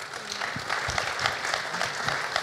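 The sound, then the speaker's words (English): An audience claps steadily, a dense spread of many hands ringing out together at a moderate, even level for a couple of seconds, with no one speaking over it. “I reckon that's worth a clap.”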